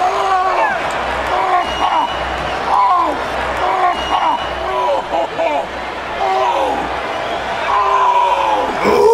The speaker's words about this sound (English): this is where we get our grunt of the night as well. Big Show's selling of his broken ankle.